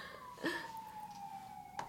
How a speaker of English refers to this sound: We've got sirens. The sirens are going to be all in the background of that. Goddamn sirens.